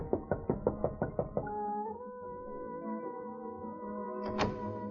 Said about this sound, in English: found a door that said Miss Butterfield, and knocked